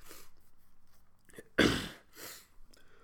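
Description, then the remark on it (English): A single sharp cough bursts out after a quiet stretch, slightly muffled as if turned away from the mic, followed by a softer breathy rasp. No one speaks. “A little cough. I try to pull away from the microphone and I could see the big spike.”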